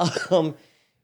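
A person clears their throat in two quick, rough, gravelly bursts, the second slightly stronger, then the sound trails off into quiet.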